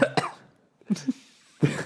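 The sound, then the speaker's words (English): Three short, harsh coughs, spaced roughly evenly about a second apart, with brief silence between them and no talking. “You've got to have the cough in the background.”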